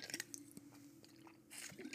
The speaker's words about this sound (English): So, let me take a sip of water because this is about to get real.